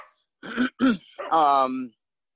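A miniature goldendoodle named Twyla, about 2 years old, barks twice in quick succession, then lets out a longer, drawn-out bark or yelp, clear with no talking over it.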